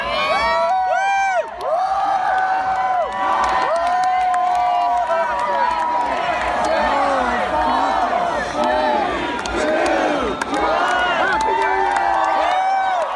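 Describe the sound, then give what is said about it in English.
A large crowd cheers and shouts excitedly as a countdown clock ticks to zero, many voices overlapping in rising and falling whoops and yells that stay loud and unbroken throughout, with scattered high-pitched shrieks standing out. “But so anyway, I have video online on our Facebook page of the final, I want to say 30 seconds of the clock and everybody getting really excited.”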